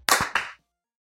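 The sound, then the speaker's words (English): Two sharp hand claps land about a quarter second apart, each a bright, crisp smack with a brief trailing ring, then silence. No voices are heard. The clapping follows a countdown cue for everyone to clap. “Everyone clap in 3, 2, 1.”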